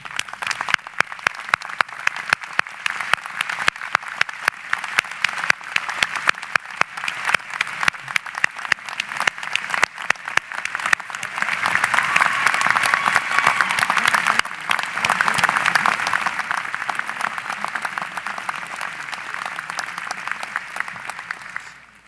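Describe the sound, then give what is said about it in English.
Sustained applause from a large crowd at a law school graduation for the class of 2015, with graduates standing to honor and thank their families. The clapping is dense and rapid, swells louder around the middle, then gradually thins and fades out at the end. “I ask the graduates to stand and join me in a round of applause to honor and thank your families.”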